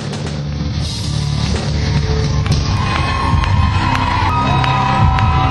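A concert crowd cheers in a loud, steady roar as the performer ends his set and leaves the stage, with scattered claps and a few high whistles or shouts rising above the din for the whole stretch.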